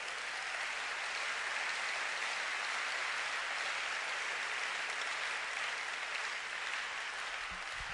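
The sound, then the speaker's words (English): An audience claps hands in dense, sustained applause, a steady wash of many overlapping claps that stays loud and even throughout with no voices. “You miss a good place to clap your hands.”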